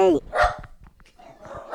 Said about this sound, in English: Dog's joining in now.